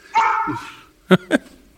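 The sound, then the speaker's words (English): A dog barks at someone on a scooter, first a drawn-out, whining bark, then after a short pause two quick, sharp barks in succession, with no one talking. “Greta's barking at someone on a scooter.”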